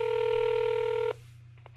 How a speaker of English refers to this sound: Hold on, we're dialing right now. We're hopefully gonna be ringing in just a moment here. We'll find out. Now, is this the home line? Is this the home line? Hey. This is the home line. We're ringing.